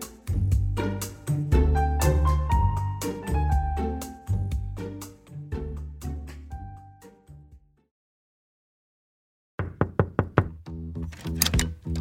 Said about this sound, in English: Right now, people around Britain are answering a knock at the door and being asked some intimate questions.